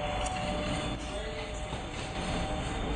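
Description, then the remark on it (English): A train rolls past, a steady, loud rumble and rattle that fills the whole stretch, with a faint metallic whine riding on top. No one speaks. “Does that mean an hour has passed? The train, what, every half hour?”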